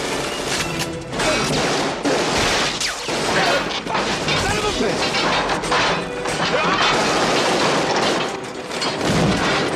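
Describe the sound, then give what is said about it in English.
A loud, dense stretch of crashing and smashing impacts as a painter's platform comes crashing down with a man on it, with sharp bangs of a gun fired upward mixed into a chaotic, sustained clatter of falling debris and metal lasting throughout. “by getting underneath him, unloading his gun upward while shoving the bottom of the platform until this goon comes crashing down with the platform.”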